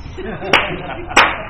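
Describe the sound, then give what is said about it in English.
Two sharp hand claps, a little over half a second apart, ring out clearly over a low, steady background murmur. “Who goes to a movie and stops and claps for the screen?”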